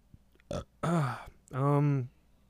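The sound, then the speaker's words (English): A loud burp in two or three voiced bursts, the longest a drawn-out, croaky belch near the end, with brief quiet gaps between them. “ASMR burp, oh shit.”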